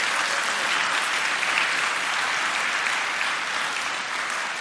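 Steady, dense applause from an audience fills the whole stretch, a loud continuous patter of many hands clapping with no voices rising above it.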